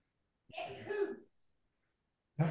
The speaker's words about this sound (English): A sneeze in the back. Someone's got something to say.